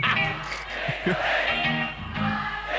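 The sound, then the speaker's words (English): A large live concert crowd cheers and shouts continuously, a dense wall of many voices with yells rising above it, loud throughout with small surges and dips. “That crowd gets lit!”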